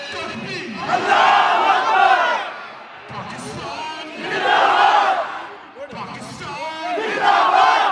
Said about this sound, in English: Someone on a PA leads the group in a series of chants.